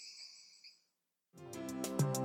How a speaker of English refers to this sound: Northern leopard frog.